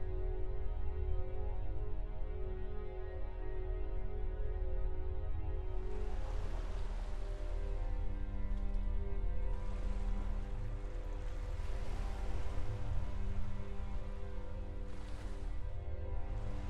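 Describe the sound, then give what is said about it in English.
Ocean waves wash and surge in broad, hissing swells over a steady low rumble, the surf rising in several bursts after the first few seconds. No one speaks. “The hypnotizing sound of the waves lulled his mind into an uneasy reprieve, one he was getting all too used to throughout this year-long war.”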